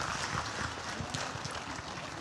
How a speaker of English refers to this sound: And so there are two individuals over here who want to express their belief in Jesus. And so I'm going to make my way over here. And as I do, why don't you give them a clap as we do this morning.